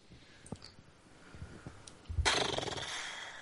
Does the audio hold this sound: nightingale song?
no